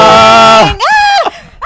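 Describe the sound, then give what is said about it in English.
A loud, excited scream, let out right after a message is sent, rises and bends in pitch, breaks off, then a second high wavering shriek follows, with another starting at the end, all without talking. “This is the most Sorry. Excitement I've felt in this scream.”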